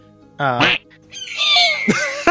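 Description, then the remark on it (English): A person imitates an eagle cry with a short, harsh vocal squawk, then a longer, high, screechy cry that wavers and rises, fairly loud. “I can't do a good eagle cry. What's a good eagle cry?”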